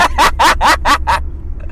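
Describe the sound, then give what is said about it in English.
A car engine struggles and sputters as the car fails to kick into gear while driving down the road, giving six quick rhythmic bursts over a steady low rumble before settling into a quieter drone. “Did that do it? Did I finally kick in gear?”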